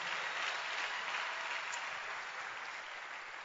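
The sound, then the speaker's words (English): A church audience claps hands for preachers in sustained, dense applause, a steady crackling wash of many overlapping claps at even loudness throughout, with no voices standing out. “Clap your hands for anointed preachers.”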